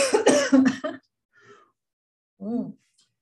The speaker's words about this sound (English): I have to cough.